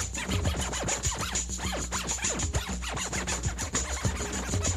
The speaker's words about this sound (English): Digital scratching is included, so any sample can be dragged onto the scratch window, and then using the mouse clicking, you can scratch back and forth through it.